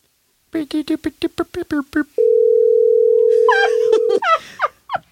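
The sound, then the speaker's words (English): A quick run of about nine short, evenly spaced beeps like keys being dialed, then a steady, unbroken telephone tone for two seconds. A voice starts talking over the end of the tone. “Go ahead and give him a call.”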